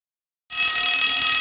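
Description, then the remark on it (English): After a brief moment of silence, a loud old school bell bursts into a continuous, shrill metallic ringing that holds steady without pause, alone. “So let's have our guests introduce themselves after, of course, we hear the welcoming ring of the old school bell.”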